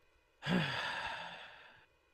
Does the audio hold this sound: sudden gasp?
yes